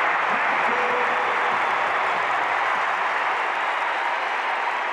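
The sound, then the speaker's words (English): A basketball arena crowd roars and cheers on the Jazz during a game against Dallas, with Dallas leading 83-80 and 8:11 to play, in a steady, loud, dense wash of noise, with scattered clapping mixed in and no clear voices standing out. “Crowd egging on the Jazz, hoping to keep the season alive.”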